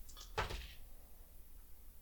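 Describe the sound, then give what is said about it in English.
A single brief wooden creak of a floorboard giving under weight sounds quietly against a still, near-silent background with no voices. “You hear a floorboard creak behind you.”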